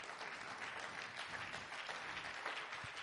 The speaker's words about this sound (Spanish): Dele otra ofrenda de palmas al Señor.